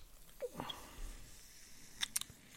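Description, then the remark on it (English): A few crisp crunches of someone lying on a couch chewing Cheetos cheese puffs, arriving in short bursts separated by quiet pauses, with no talking. “I'm eating these Cheetos off of my stomach.”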